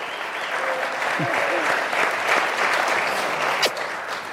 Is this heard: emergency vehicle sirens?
no